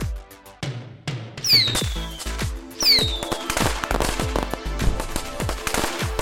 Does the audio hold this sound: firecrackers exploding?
yes